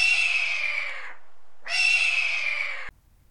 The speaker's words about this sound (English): If I heard a hawk sound, I could probably. Yeah, we edited in, but yeah. What you should do is you should cut in an actual hawk.